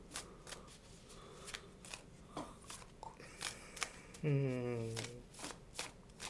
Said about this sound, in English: We're gonna flip a card.